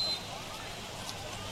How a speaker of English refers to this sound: You can probably even in our field mic hear the rain falling on the aluminum bleachers here. Pretty steady rainfall tonight.